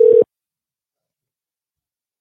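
A single brief telephone tone from an outgoing call to a friend sounds at a steady mid pitch for about a quarter second, then cuts off into silence.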